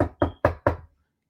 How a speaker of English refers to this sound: He had said something about like the campus police, and within like an hour, they was knocking on our door.